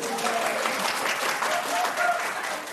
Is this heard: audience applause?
yes